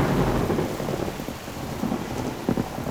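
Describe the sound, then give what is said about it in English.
Steady rain hisses over a deep, rolling rumble of thunder that stays low and continuous for a few seconds, with a couple of brief louder patter bursts near the end. No voices. “Thunder, rain.”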